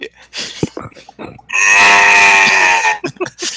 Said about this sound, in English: What's with the zombie cow?